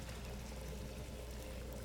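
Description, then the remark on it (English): A steady, soft stream of water pours into a baptismal font during a baptism, a continuous gentle splashing that holds even for about two seconds with no voices over it. “may your Spirit be upon us in what we do, that this water may be a sign of, for all of new life in Christ”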